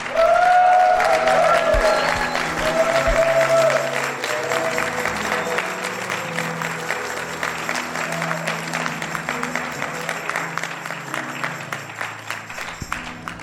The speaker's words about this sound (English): God, I thank you for what you have done. Can we just give God a clap, cheer?